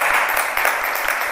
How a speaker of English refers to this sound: Give the Lord a hand clap for his word.